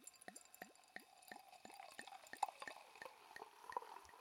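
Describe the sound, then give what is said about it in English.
Prosecco poured into a glass: a steady series of quick glugging gurgles, about three a second, over a soft fizzy hiss, quiet with no voices. “I get such anxiety every time, and I love how we're pouring in a glass that is not the glass.”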